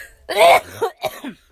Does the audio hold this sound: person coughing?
yes